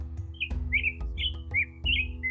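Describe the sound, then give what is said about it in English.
A robin named Buns, which flew in, tweets in a quick series of about six bright, short chirps at an even pace, with a steady low hum underneath and no one speaking. “And then you can hear buns just. Out and proudly tweeting.”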